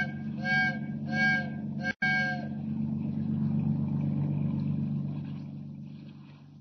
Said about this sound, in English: Signal that freighter to heave to. Give her the whistle.